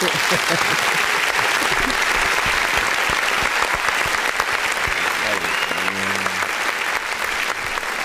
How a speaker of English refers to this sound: Get some air horns. No. That's applause.